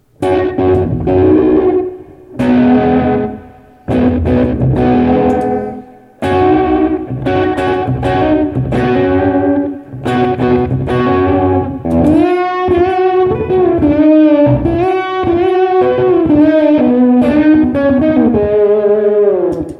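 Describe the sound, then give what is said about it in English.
An electric guitar plays choppy chords, then a sustained melodic line, through an H9 pedal set to two slapback delays, each note followed by quick repeating echoes. Loud and steady, with no voices. “And then sometimes, you know, some songs, I can put two slaps with the H9.”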